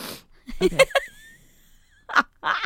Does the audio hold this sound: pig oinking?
no